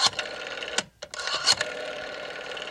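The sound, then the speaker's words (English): A rotary phone dial whirs and clicks mechanically, spinning back with a brief pause near the middle before turning again; clear, and with no voices. “Or maybe even rotary phones.”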